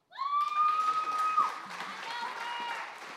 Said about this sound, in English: Got your own cheering section.